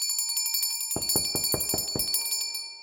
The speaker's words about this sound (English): I ring the bell harder.